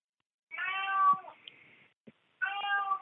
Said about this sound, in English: That's playing. Do you have a cat? Can you hear it? I can't, sir. I'm sorry. I don't hear anything. I hear a cat in the background.